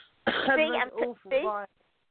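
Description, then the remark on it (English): A fairly loud cough or throat-clearing in a few quick voiced bursts, with a brief pause before the last one, then silence. “You know, I'm just about to cough and I haven't coughed the whole time.”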